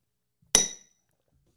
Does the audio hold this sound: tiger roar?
no